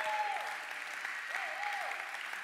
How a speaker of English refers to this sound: And yeah, come on, clap it up.